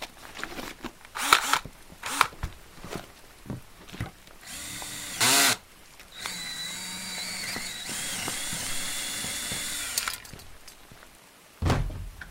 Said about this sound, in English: Give me a sec. I still need to drill the lock.